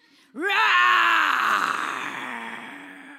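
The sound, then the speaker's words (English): A person inside a car lets out one long, loud vocal roar imitation, starting with a rising strained pitch and holding a raspy, harmonic-rich bellow that slowly fades over about three seconds. “But then, when I got into my car, I roared.”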